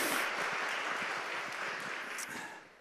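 A crowd applauds steadily, many hands clapping in a dense, crackling wash that holds fairly loud before tapering off at the end.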